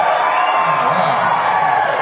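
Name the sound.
audience applause and cheering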